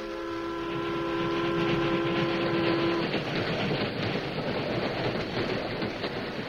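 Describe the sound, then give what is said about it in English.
A westbound steam train carrying passengers runs loudly. A sustained whistle sounds for the first few seconds over a steady, rhythmic chugging rumble that continues alone to the end. “Two passengers, a man and a woman, rode on the westbound train.”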